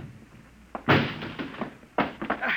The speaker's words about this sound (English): All right, Juan. Break down the door.